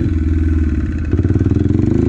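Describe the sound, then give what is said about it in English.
A dirt bike engine runs with a low, uneven drone, then shifts partway through into a rougher, stuttering pulse as it bogs when accelerating, sounding like the engine is dying and struggling to keep running. “So what is a bog? Bo-wah, bo-wah, bo-wah. It sounds like the engine is dying and then it accelerates, or it just dies and stalls out.”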